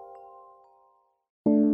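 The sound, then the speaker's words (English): A Woodstock Chimes wind chime rings with several overlapping tones that slowly fade over about a second, followed by a brief silence and then a sudden, much louder burst of tones. No voices. “Woodstock Chimes, the world's favorite wind chime.”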